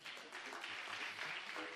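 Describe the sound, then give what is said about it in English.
A burst of hand clapping, dense and steady for nearly two seconds, loud and continuous like a crowd applauding, with a faint murmur of voices underneath. “If I will clap my hand.”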